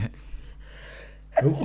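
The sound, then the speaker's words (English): A breathy intake of air builds up, then a single sharp, voiced sneeze bursts out near the end. “Bless you.”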